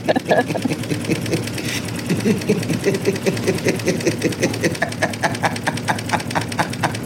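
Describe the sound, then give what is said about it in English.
A vibrating bed hums with a steady, rapid mechanical buzz, pulsing evenly throughout, while Mulder briefly gives an evil laugh on the bed in the first half as a door is closed. “And then Mulder's evil laugh on the vibrating bed as she closes the door.”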